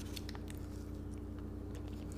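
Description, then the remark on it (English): Someone takes one bite of and chews a crunchy Reese's Big Cup with pretzels, a peanut-butter cup: a quick run of crisp, irregular crunches over a steady low background hum, with no talking. “I'm just going to take one bite out of this because this is a big cup.”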